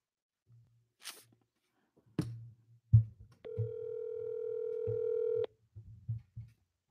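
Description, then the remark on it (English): A steady telephone dial tone hums for about two seconds as someone calls a phone number, framed by clicks and handling noises of a receiver being picked up and buttons pressed, with low rumbling in the background. “let's punch in your phone number, Haste. Oh man. Okay, I'm just going to call somebody here.”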